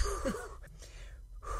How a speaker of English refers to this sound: Like, I'm still here, hanging in. Deep breaths. I know, deep, like, some, yeah, you're, like, basically my breathing partner.